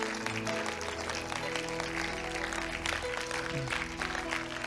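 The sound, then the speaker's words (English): A large church audience claps to the Lord steadily and densely throughout, a loud, continuous patter of many hands, with sustained musical tones, like an organ or keyboard, held underneath. “Why don't we just clap our hands one more time to the Lord?”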